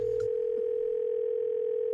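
A steady telephone dial tone before a prank phone call hums at one constant pitch for about two seconds, loud and unbroken, then cuts off abruptly.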